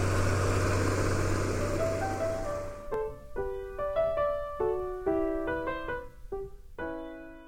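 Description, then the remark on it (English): A tractor engine ploughing a field drones loudly and steadily for about three seconds as it turns a corner, then cuts off as a short run of bright, plucked musical notes takes over. “This is the chance to find out about ploughing.”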